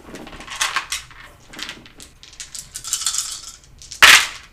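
Dice, including a d10 and a d6, rattle and clatter in a quick series of small clicks, ending in one louder sharp knock as they land on a hard tabletop. No voices are heard.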